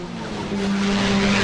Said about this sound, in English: And that was the entire field of cars just off the start line.